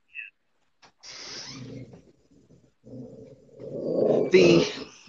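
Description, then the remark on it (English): A pet dog named Cujo growls and grumbles in the background in two rough, drawn-out bursts, the second louder and more strained, with a short quiet gap between them and no talking over it. “Okay, that's Cujo in the background, my dog.”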